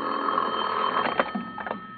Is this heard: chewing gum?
no